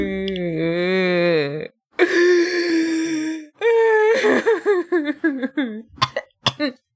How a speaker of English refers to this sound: Oh, are you okay there? You got a little cough?